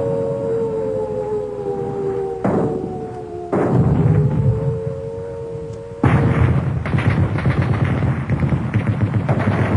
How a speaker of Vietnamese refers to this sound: Tôi như choàng tỉnh khỏi một cơn mơ khi những tiếng nổ rền như bắp rang của súng đạn, những tiếng bọp bọp của trung pháo, tiếng cùng cùng của đại liên, tiếng ùng ục của đại pháo. Tiếng trung pháo nghe ngọt nhất.